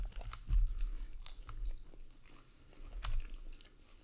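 Chewing of a snack, with repeated crunchy bites and soft mouth sounds in an irregular rhythm, heard on its own without talking.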